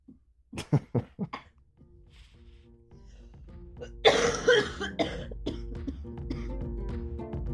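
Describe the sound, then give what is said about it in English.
A fit of coughing at home: a quick run of four or five sharp coughs, then a pause and a rougher, louder cough or throat-clearing, with a low steady hum underneath. “Nothing but romance at this house. Podcasting and coughing.”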